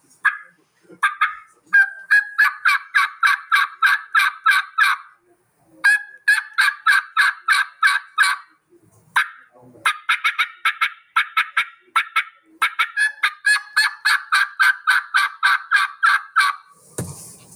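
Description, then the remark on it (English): A handheld turkey call produces loud runs of raspy hen yelps, several quick excited series with brief pauses between them, used in the woods to try to get a turkey to gobble. No one speaks. “And trying to get that turkey to gobble.”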